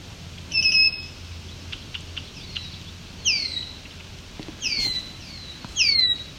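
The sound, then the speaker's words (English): A swamp sparrow sings in four short bursts of bright, high, down-slurred notes, clear over a faint low background hum, with no talking. “There's a nice loud swamp sparrow.”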